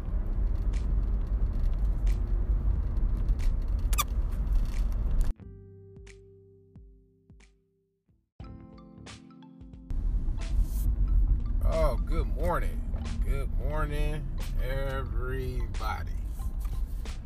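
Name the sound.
car driving in traffic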